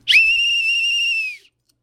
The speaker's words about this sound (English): This whistle fights the terrorists.